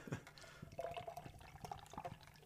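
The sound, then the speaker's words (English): Thick beer glugging and splashing steadily into a glass, with bubbly gurgles and small drips over a couple of seconds; no talking. “That's a 30 weight pour.”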